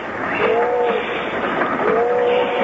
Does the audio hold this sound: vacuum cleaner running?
no